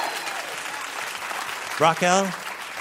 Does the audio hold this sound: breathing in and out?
no